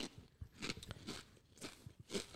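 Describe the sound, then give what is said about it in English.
Crunchy chewing of snacks as people munch while relaxing, with a steady series of crisp, crackling bites repeating about twice a second. No one speaks. “We're all here, we're chilling now. We're munching a little bit.”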